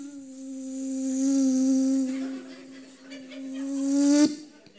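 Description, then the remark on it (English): A mosquito whines steadily at night as someone tries to fall asleep, its thin buzzing tone swelling louder and softer for several seconds before cutting off abruptly with a sharp tap, leaving near silence. “That mosquito kept me awake longer than the lion did.”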